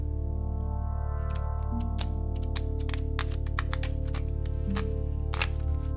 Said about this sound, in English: Please, shuffle the cards.